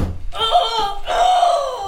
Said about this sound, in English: Metal clanging.